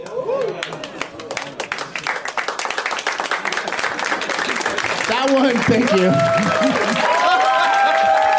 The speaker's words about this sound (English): That was like a movie slow clap. That was a golf clap that turned into just a wave. Yeah. That was authentic respect.